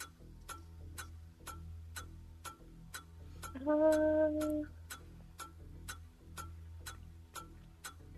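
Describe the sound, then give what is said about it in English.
A trivia quiz game timer ticks in a steady, sharp rhythm, about two clicks per second, while a question is answered, with a brief low droning tone sounding over the ticks partway through. “Timer's going.”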